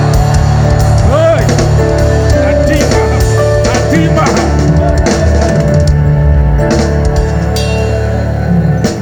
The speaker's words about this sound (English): Clap your hands and shout. I will. achieve it. Clap your hands and let me hear a resurrection shout.